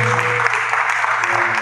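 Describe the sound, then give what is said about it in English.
An audience claps together in a steady, dense wash of loud applause, many hands overlapping with no distinct individual beats, over a low constant hum. “If everyone is clapping, it's better than that.”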